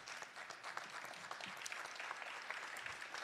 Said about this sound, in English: please, folks, on your feet, give them a round of applause for their strength and their example.